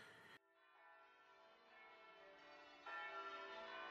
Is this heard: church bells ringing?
yes